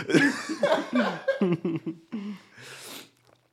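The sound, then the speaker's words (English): A run of voiced, laughter-like vocal bursts gives way to a single breathy, noisy cough near the end, moderately loud, followed by quiet. “Nah, that was a real cough.”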